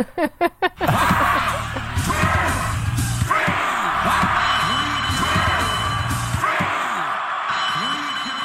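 A loud crowd roars and cheers continuously, dense overlapping yells and whoops forming a steady wash of noise, preceded by a few quick sharp thumps at the very start.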